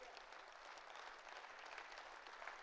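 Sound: audience hand clapping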